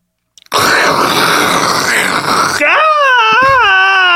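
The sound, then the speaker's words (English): A voice imitates a Boeing 747 crashing: a loud, harsh rushing roar lasting about two seconds, then a sustained wavering scream with bending pitch, all vocalized without words. “If you didn't know what I was doing, that was the sound of an actual plane crash.”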